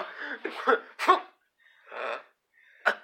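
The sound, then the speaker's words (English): A person acts out a character's wet, sputtering coughing fit, coughing up blood: a cluster of harsh coughs, a sharp hack, a drawn-out rasping breath, then one last short cough, fairly loud. “I cough up some blood, some of it being pang blood, and I just slowly sink.”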